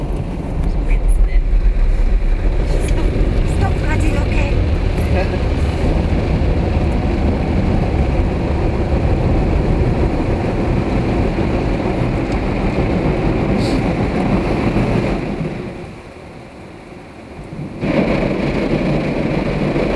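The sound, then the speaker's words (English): A steady, loud rush of spraying water and whirring machinery from an automatic car wash rinsing off wax just sprayed onto a car, briefly dropping away near the end before surging back. Voices talk faintly underneath. “This is taking off the wax and... All right. That they've just sprayed on.”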